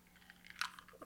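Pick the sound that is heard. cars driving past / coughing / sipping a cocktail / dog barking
sipping a cocktail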